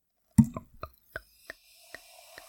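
Wine glugs from a bottle into a glass: a loud first gurgle, then a series of sharper hollow glugs spaced farther apart, over a faint steady trickle.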